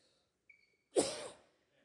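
A single sharp cough bursts out close by, then trails off quickly into quiet, with no talking around it.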